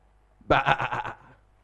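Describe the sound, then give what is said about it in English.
A voice imitates a sheep's bleat: one wavering, quavering "baa" lasting under a second, loud, with a rapid pulsing tremble before it trails off. “But when they are in the church, they bleat like a sheep.”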